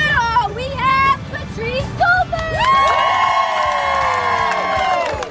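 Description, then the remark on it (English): A crowd at a Special Olympics medal ceremony cheers and whoops excitedly, with many high, wavering voices shouting over a dense babble; a long sustained chorus of shrill cheers rises and holds in the second half. “The pure joy on the faces of the athletes, the cheering, it'll make you feel good all day.”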